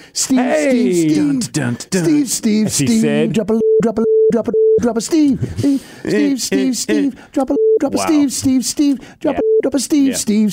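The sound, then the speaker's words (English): A man talks rapidly while three flat, steady mid-pitched censor beeps cut into his speech, one lasting about a second and two shorter ones, each blotting out a swear word. “Do you have to beep that? Yeah, probably. Yeah, all of them.”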